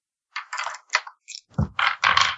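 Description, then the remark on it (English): Dice rattle and clatter across a hard tabletop in a quick series of bursts, fairly loud, with no one talking, rolled for a stealth check in a tabletop role-playing game. “Thank you, improbable dice.”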